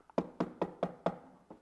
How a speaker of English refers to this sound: He stands at the door knocking, your heart's door knocking.